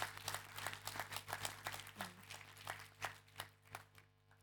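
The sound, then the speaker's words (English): A crowd claps for Jesus with a steady patter of many hands clapping, fairly soft overall, thinning out toward the end over a low constant hum. “Can we give Jesus a clap”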